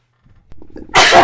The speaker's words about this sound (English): You unmuted to sneeze in it. Unmuted to sneeze, you little kid.